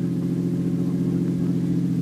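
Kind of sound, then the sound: vehicle, car driving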